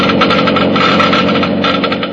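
Geiger counters measuring engine-part wear in a motor oil laboratory test click rapidly in a dense, steady crackle that runs for about two seconds, loud, with no voices over it.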